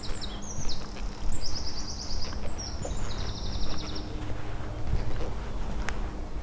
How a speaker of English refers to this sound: Besides the occasional shout of kids playing soccer in the distance, or the roar of a jet overhead, the only sounds I could hear were those of birds chirping and the leaves of new-growth trees rustling around me.